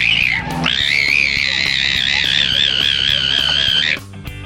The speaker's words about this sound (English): Nothing like the sounds of dolphins making love to start the show